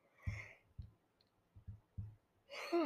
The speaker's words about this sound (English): Okay, let's hope this is the last yawn I have. Because, oh my god, I've yawned so much during this episode, Jesus.